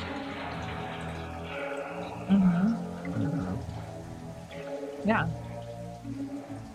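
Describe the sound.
Shower water runs in a steady, continuous hiss throughout, moderately loud, while brief bursts of voice rise over it a couple of times.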